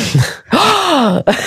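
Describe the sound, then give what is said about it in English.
A loud gasp that turns into a drawn-out voiced breath with a rising then falling pitch, bracketed by short breathy intakes. No talking. “as I'm gasping again, I got to stop doing that.”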